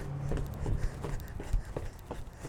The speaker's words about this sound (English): the boots pick up behind me